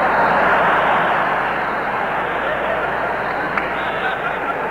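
A loud, steady airplane engine drone fills the whole stretch, a dense continuous roar that holds its level from start to finish without pausing or changing pitch.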